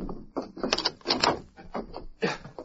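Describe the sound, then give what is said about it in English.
A door bolt slides and clatters shut in a run of rattling metallic scrapes and clunks, fairly loud and heard alone, with no voices. “I'll bolt the door.”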